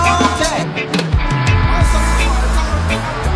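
A loud DJ-style record rewind: warbling, sliding pitches spin backward over a thick, bassy music bed for a few seconds, with no voices.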